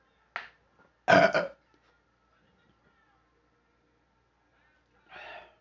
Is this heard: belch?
yes